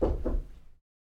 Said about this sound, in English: I just sort of stand in front of the door for longer than is expected, sort of running the mental calculations in my head, and then knock on the door.